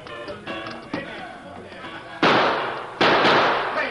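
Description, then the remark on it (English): Two loud, sharp gunshots, fired into the ceiling as a warning during a holdup at the Sawdust Cafe, crack out less than a second apart, each trailing off in a long echoing decay, preceded by a few softer knocks and thumps. “As we go through the door, fire a couple of shots into the ceiling just as a warning.”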